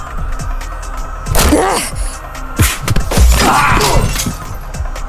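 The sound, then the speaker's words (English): Chairs smash during a brawl: two loud, splintering crashes roughly a second apart, each followed by scattered clattering debris, over a steady background din with scuffling. “Oh, they're getting chairs now.”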